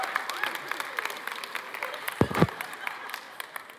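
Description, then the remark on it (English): A crowd in Abbotsford applauds steadily, many hands clapping in a dense, scattered patter, with a brief voice breaking through midway. “All right, you can clap.”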